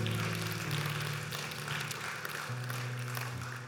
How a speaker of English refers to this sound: Yeah, I'll take some applause for some love. Yeah. We're here for love and peace and justice and freedom. If that don't deserve applause, I don't know what does.